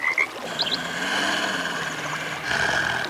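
A harsh, sustained wild animal roar rumbles steadily for about three seconds, fairly loud, echoing through the woods of a city park, with a few short high chirps near the start and no voices.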